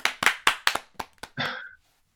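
A short burst of hand clapping, about eight sharp claps in a quick, slightly uneven rhythm, ending with a brief breathy, hissing whoosh before silence. No one speaks.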